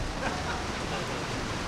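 Heavy rain pours down on a building in a dense, steady hiss, a constant wash of noise that never lets up, with no separate drops standing out.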